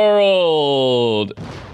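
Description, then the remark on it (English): A steady, buzzing harmonic drone holds for about a second, then abruptly cuts to a loud, rushing burst of noise, like an explosion sound effect, that lingers to the end. “Oh, an explosion.”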